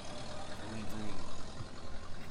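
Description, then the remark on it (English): A car engine runs steadily, a continuous low rumble with a broad hiss of mechanical noise that holds fairly constant throughout, with no clear talk over it. “All right, get in the car.”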